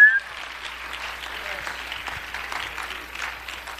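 A church audience claps their hands to the Lord in a steady, dense wash of applause that holds at an even level throughout, with a brief higher tone sounding right at the start.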